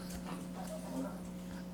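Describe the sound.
A dog lets out soft, high whines in short thin bursts, fairly quiet over a steady low background hum, with faint voices murmuring.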